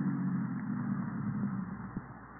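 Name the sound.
car approaching outside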